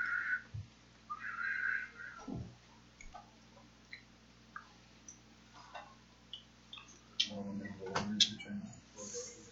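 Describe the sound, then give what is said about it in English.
A couple of short, breathy whistles, someone imitating a whooshing water sound, followed by scattered light clicks and some faint vocal noise toward the end. “I do explain what whooshy sounds. Yeah, it's kind of like a whistle.”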